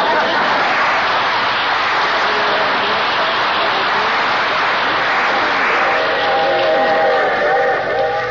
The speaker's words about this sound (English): Boy, I hate these long train rides, especially to see that old gutter inspector.